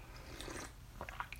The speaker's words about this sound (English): Okay, it's in the cup. Now I'm gonna sip it.